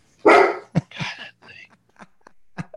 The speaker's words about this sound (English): Shut up, dogs.